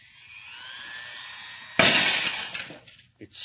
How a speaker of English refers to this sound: It's amazing. The glass was shattered.